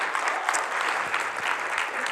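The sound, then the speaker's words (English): A church audience applauds steadily, a dense, even wash of many hands clapping, sustained throughout without any voices standing out. “We ought to give him a hand clap for his heart is not prodigal, that's for sure.”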